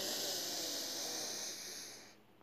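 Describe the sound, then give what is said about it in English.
A long, steady airy deep inhalation in a guided breathing exercise, soft, a broad breathy hiss lasting about two seconds before fading out, with no talking. “And take another deep breath in.”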